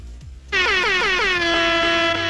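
air horn blast

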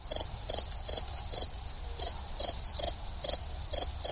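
crickets chirping

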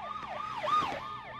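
emergency vehicle sirens

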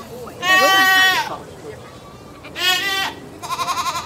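goat bleating

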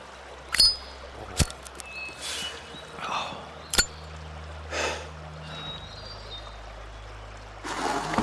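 flowing river water

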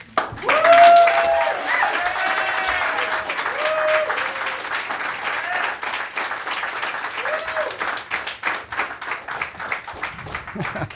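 audience applause

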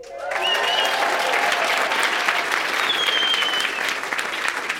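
audience applause

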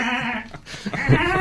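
lamb bleating

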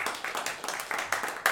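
audience applause

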